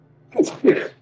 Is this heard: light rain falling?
no